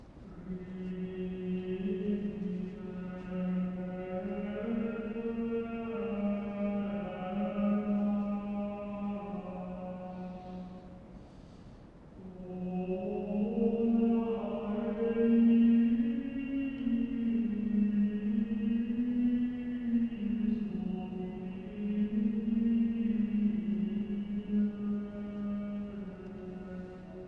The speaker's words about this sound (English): So we have three bell beats, this Gregorian chants, and you can imagine what kind of spirit is already in the hall. Even if it's 2,000 people in the hall, suddenly they get another level of listening.